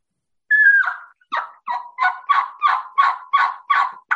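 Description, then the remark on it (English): A steady run of about nine raspy turkey yelps played on a turkey call, fairly loud, the first note drawn out and the rest coming in an even rhythm with no talking. “Yelping again, backbone. All I'm doing is going.”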